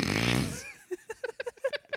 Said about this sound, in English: See, this is why I need you up on the mic so we can get the snorts in there. That's good stuff.